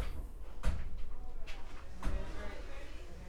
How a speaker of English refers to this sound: He really just threw his body up against. Let me open this door.